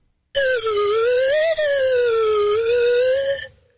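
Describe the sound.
A person imitates a UFO with a loud, eerie whistled tone that wobbles slowly up and down in pitch for about three seconds, with no talking.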